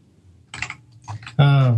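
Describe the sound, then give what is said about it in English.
A few clattering keystrokes on a computer keyboard in short irregular bursts, followed by a brief loud voiced sound at the end. “Is it right on your keyboard?”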